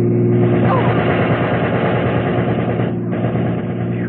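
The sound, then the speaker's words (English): A loud, sustained rattle of machine-gun fire from a passing car rips along over the roar of the car's engine, continuous for several seconds before easing slightly near the end. “I don't feel like playing target for that thug with a machine gun anymore”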